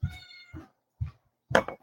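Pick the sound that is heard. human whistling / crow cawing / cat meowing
cat meowing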